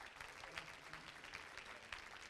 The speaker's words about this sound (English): He's going to come and preach for us this morning. Clap your hands. Give him a good welcome.